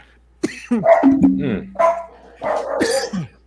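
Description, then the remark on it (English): Dogs bark loudly in a quick flurry of several sharp, overlapping barks, with a brief pause before a final longer burst. “Your dogs just wanted to get a take.”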